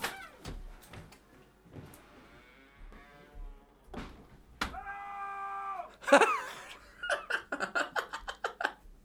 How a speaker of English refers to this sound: Basically, there's studios next to us, and I'm going to go into the studio and shout as loud as I can, and you'll hear it. Bear in mind, these are professional quality radio studios.